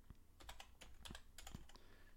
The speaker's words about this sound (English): I can't even see what I'm typing because of the keyboard.